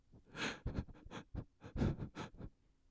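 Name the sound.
imitated hard breathing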